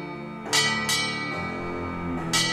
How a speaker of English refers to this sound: And the bell does ring for bloody hour.